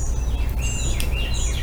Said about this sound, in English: I'm outside today, so you hear all the birds probably.